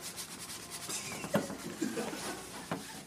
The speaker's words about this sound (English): washing the dishes